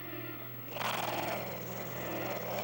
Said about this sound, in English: Getting our money's worth out of that sound effect of puppets growling.